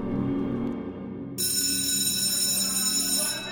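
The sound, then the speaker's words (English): A school bell starts ringing after a moment of low room noise, a loud, continuous electric jangle that keeps going steadily to the end. “Finally, the bell rings.”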